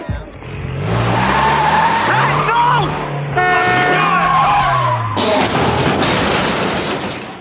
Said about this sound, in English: That's such an excellent car crash because it's very reminiscent of the dude crashing his car in The Big Lebowski. Just the way it's not like a dramatic car crash.